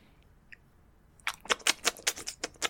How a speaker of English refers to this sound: It's clapping noises.